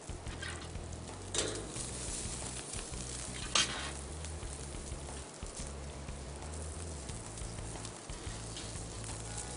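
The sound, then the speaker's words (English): Pancakes made with finely milled whole cricket powder sizzle steadily in a hot pan, a dense, crackling hiss with occasional brighter pops and spits, heard on its own without any talking. “And you could do French toast, pancakes, as we're doing as of today, with, yes, once again, I'll repeat it one more time, finely milled whole cricket powder.”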